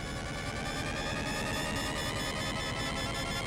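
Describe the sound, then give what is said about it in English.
A loud, continuous weapon-firing alarm blares as a weapon finishes charging before firing, a harsh, buzzing stack of steady tones over a rumbling, noisy background. No one speaks. “Sound firing alarm.”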